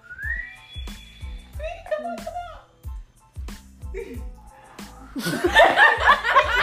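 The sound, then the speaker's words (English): A person whistles a rising, then steady, train-like tone, followed by wavering hoots and an outburst of laughter, over a steady low thumping beat. “You sound like a train.”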